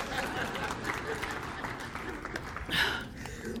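An audience listening to a sermon applauds steadily, a dense wash of many hands clapping at once with no pauses, swelling slightly toward the end.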